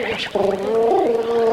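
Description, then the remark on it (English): A 'Krakatoa east of Java' underwater yodel by a singer: a sustained, gurgling voice that leaps abruptly between a low and a higher pitch several times, steady and fairly loud, with a watery, bubbling warble throughout. “A Krakatoa east of Java, underwater yodel, ….”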